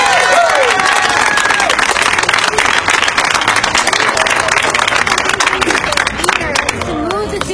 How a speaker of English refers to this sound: So I do think this was a victory. So let's really give ourselves a round of applause.